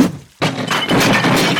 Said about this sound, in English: The hammer slammed into the fountain, breaking it free from the ground as water came shooting out.